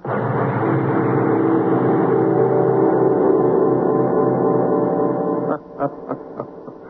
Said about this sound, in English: Ask not for whom the bell tolls. It tolls for thee.